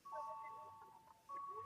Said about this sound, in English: You hear the store bell going off?